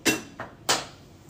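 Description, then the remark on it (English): A chair being lifted and adjusted: three sharp, hard clunks in quick succession, the first and last loudest with a softer knock between, each fading fast, with no voices. “I lifted up my chair.”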